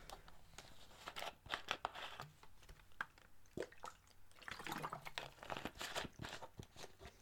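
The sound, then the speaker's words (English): Quiet sipping and swallowing of water, with a series of small wet clicks and slurps scattered irregularly over several seconds. No one speaks. “Let me get a sup of water first, though.”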